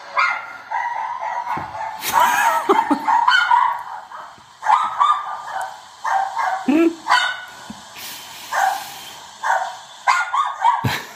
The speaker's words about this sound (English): Oh, God, that is like the maximum that my ears can cope with. That's full on highest tone barking. It's like sometimes I get used to it, but I feel like that's even more depressing somehow. Is it like a really small dog, like hamster size?